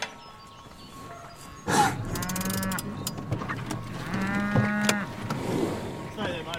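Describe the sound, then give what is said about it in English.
Grazing cattle on the Bogan High Plains moo twice in a row, each a long, drawn-out bellow lasting about a second, with fainter lowing from other animals and a steady outdoor background hum. “So they took 1,000 head of stock up there in 1851, and that was the start of the cattle grazing on the Bogan High Plains.”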